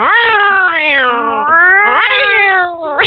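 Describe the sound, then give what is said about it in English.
A person imitates a cat in heat, letting out one long, loud, wavering yowl that rises and falls in pitch for about three seconds. “That noise, do you think you could imitate it? I think I could give it a shot.”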